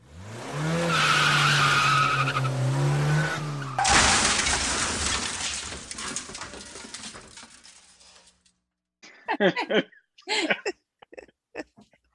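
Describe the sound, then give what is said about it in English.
A race car drives past fast with a loud, rising engine whine and harmonic tones, then tires screech and skid in a long burst, fading out, followed by a few short clattering sounds and brief chirps. “he could be flying over Denise's race car. Not for long. She's driving pretty fast.”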